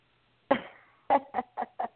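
A chicken clucks: one drawn-out squawk, then four short, quick clucks in a steady run, loud and clear with no talking.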